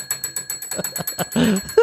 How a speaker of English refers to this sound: I would rather you play with this bell. All right, you want me to play with the bell, you say, huh?